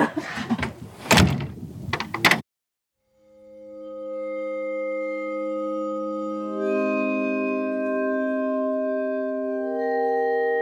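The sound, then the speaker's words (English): A door bangs shut with a few loud thuds and rattles, followed by a brief silence, then a steady layered humming tone swells in and holds. “Because before the door closed behind them, I handed the crew an audio recorder.”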